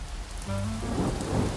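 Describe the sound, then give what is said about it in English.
Heavy rain pours down steadily in the Hamptons in a dense hiss, with a low rumble of thunder rolling in beneath it partway through. No voices. “It was pouring rain.”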